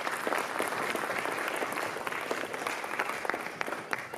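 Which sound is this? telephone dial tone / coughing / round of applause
round of applause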